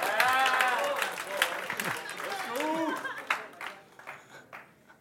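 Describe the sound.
Several voices whoop and cheer over scattered clapping as a man does pull-ups on a pull-up bar carrying about 30 pounds of water, lively at first and then thinning out to a few sparse claps near the end.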